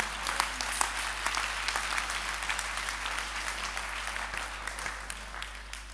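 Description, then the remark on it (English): An audience applauds with weak, steady, scattered hand clapping, fairly soft and sustained, many hands overlapping in a dense patter with no talking. “You see, even how weak clapping hands you are doing now, they are transactions.”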